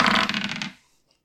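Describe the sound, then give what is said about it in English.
Dice tumble across a table in a brief rattling clatter of several quick clicks during a tie-breaking roll-off, fading out within under a second into silence. No one speaks. “All right, we're rolling off.”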